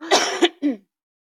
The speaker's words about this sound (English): I need to cough. I'm sorry. Okay.